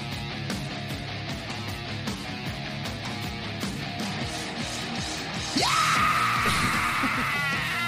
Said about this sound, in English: I wish that scream was better. It started off good, but then it petered a little bit.